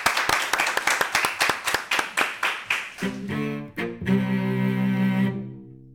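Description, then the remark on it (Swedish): An audience at Almedalen applauds itself, clapping in a brisk, steady rhythm, sharp loud claps for about three seconds, then a sustained tonal, music-like sound takes over as the clapping fades. “Ja, vi applåderar publiken.”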